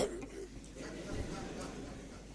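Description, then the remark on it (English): A man imitates a suppressed cough, a brief muffled throat-clearing grunt held back in his chest rather than a full cough, quiet, with no words spoken. “He's got a cough. Instead of just coughing properly, he just goes.”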